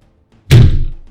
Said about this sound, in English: There's a loud bang at the door. And again.